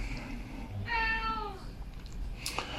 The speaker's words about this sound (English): There's a cat.